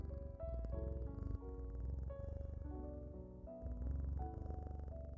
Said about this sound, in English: Simply return your awareness to the sound of the cat's purr, as if it were a lullaby, sending you into a deeper and deeper state of relaxation.